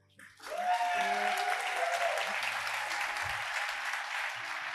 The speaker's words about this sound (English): we have our Young Leaders Advisory Councils here today with us as well. So if you want to give it a round of applause.